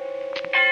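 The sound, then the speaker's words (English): A church bell tolls somewhere in the distance in the darkness of early evening on All Souls' Night, its low metallic hum ringing on steadily before a fresh, louder stroke swells in near the end. No voices are heard. “And the sound of the bell tolling away in the darkness of early evening.”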